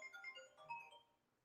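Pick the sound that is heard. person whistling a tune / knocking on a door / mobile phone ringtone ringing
mobile phone ringtone ringing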